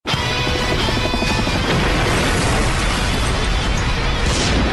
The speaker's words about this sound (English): There's something missing about this movie. I know. Explosions! Michael Bay, explosion!